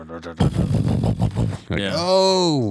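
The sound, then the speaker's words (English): A voice imitates a revving Challenger muscle car engine, starting with a gritty, sputtering rumble for about a second, then swelling into a loud, sustained vocal roar that rises and falls in pitch. “The attachment of sitting in a Challenger and just hearing that engine just...”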